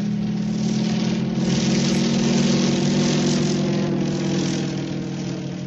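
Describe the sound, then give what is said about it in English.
A propeller aircraft engine drones steadily and loudly throughout, a continuous mid-pitched roar with a strong low hum that barely varies, with no voices. “In the air.”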